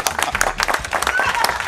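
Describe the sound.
A short, brisk round of applause from a few people, dense rapid claps at a steady loud level, with voices talking and cheering over it.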